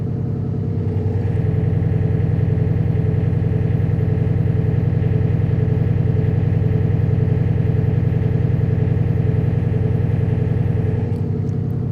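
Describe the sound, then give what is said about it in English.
A heavy engine runs steadily and very loudly inside an engine room, a deep rhythmic throbbing drone with mechanical clatter that holds constant for about ten seconds before cutting off, with no voices. “But I think I shall spare you from the full throttle sound of my engine. It's very loud inside the engine room.”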